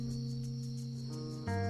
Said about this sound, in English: Not all music will be produced by humans. Right now we've got some crickets accompanied by humans.